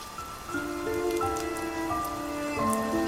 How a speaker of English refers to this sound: And cue rain.